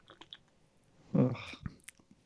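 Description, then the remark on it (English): A single sip of lukewarm Heineken 0.0% non-alcoholic beer, a brief wet slurp followed by a sharp little click or swallow, set against otherwise quiet, faint background clicks. “I'm just going to do a little sip here, see how it tastes.”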